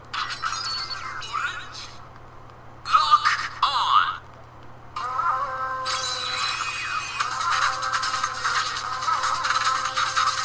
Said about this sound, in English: but for what I make up for in not having the actual toys, I make up for having, like, ringtones and stuff like this.